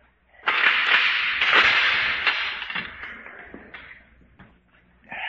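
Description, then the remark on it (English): A guard opens a door on the way to a drawbridge. It swings open with a loud, harsh grinding scrape that starts abruptly, holds for a few seconds with small knocks and rattles, then gradually fades. No one speaks. “Open the door, guard.”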